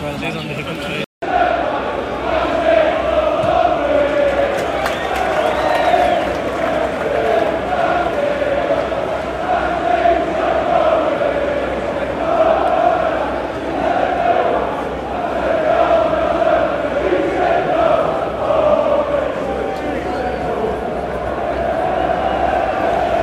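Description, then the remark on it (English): A loud crowd of United away supporters roars and chants together in a stadium as a football match against Burnley has just started, in swirling rain and mist, a dense, sustained wall of massed voices that barely dips for over twenty seconds. “Big, loud United end.”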